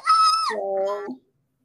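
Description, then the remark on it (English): An excited scream: a single loud, shrill voiced cry that starts very high-pitched, then drops to a lower held tone, lasting about a second before cutting off abruptly. “That's where the scream came from.”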